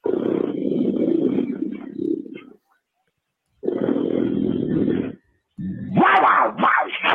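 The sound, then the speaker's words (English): A deep, rumbling animal growl sounds twice in long, loud bursts separated by a brief pause, followed by a higher, snarling roar with rising and falling tones. “That's the growl that makes him howl.”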